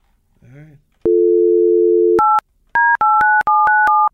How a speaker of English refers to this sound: Well, hold on. I'm calling my whippersnapper friend,